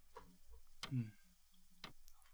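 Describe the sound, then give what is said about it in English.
A wall clock, one of several lining a wall, ticks quietly, a few sharp, dry clicks spaced apart, with a faint low murmur of voices underneath. “And there's clocks that line the wall, and one of them that you can't quite pinpoint is ticking.”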